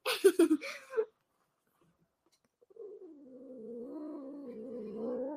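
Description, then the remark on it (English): A kitten being held gives a short burst of harsh, agitated cries, falls silent for a moment, then lets out a long, low, wavering growl that swells steadily louder. The growling is unbroken. “Are you going to growl some more?”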